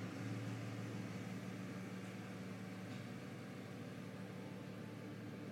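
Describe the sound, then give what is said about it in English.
A truck engine rumbles steadily outside as the truck gets going and pulls away, a low droning hum with broad noisy texture that holds at an even, fairly loud level throughout without anyone speaking. “It's actually, I'm gonna wait for this truck to get going.”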